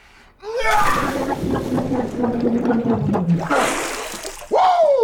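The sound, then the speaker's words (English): A sharp gasp, then bubbling, gurgling vocal noise and water sloshing as a person dunks their head into ice water, a burst of splashing as the head comes up, and another loud gasp. “When I'd feel a food craving, I would dunk my head into ice water and reset my brain.”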